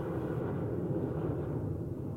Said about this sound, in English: What's that sound? The sound of an airplane. I can hear it. But I can't see it.